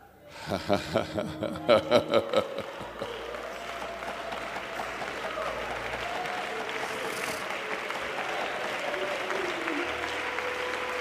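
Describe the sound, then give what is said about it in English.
An audience breaks into sustained applause, opening with a few rhythmic bursts and settling into steady, dense clapping mixed with scattered cheers and voices. “Yeah, that's a clap is fitting right there.”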